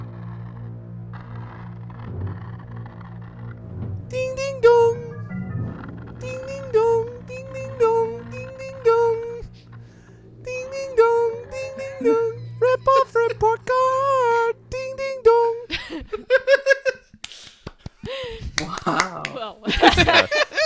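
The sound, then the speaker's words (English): A lone voice sings a bouncy theme jingle in short, clipped syllables, fairly loud, over a low steady hum, ending in a flurry of sharp clicks and bursts. “that's the rip-off report card theme that we use every episode”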